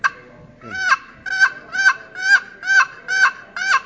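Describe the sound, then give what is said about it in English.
A rapid series of about seven raspy, evenly spaced turkey yelps from a Kostal-style wooden box call made of walnut with a purple heart lid, loud, each note sliding down in pitch with no talking. “That's the yelp of the turkey.”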